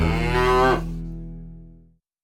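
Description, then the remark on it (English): A single cow moos loudly, a long low harmonic call that swells briefly then fades over about two seconds into silence; cattle in the Chug Water area. “the most prevalent mammal in the area were cows, owned by the Swan Land and Cattle Company that managed over 100 heads of cattle.”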